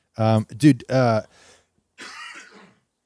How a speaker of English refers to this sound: I was such a hard cough.